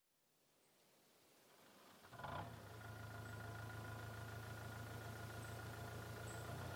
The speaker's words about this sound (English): watching Stephanie steer a tractor towards another fallen tree